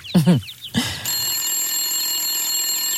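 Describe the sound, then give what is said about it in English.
A telephone rings with a steady, shrill, high-pitched electronic tone that starts after two brief warbling bursts and continues unbroken to the end. “It is a telephone.”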